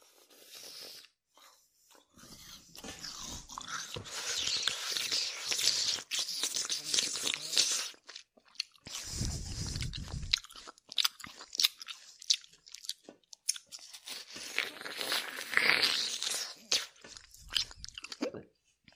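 Close, crisp chewing and crunching with wet mouth sounds, steady bites over nearly twenty seconds, occasional crinkling, and a brief low rumble midway; no one speaks.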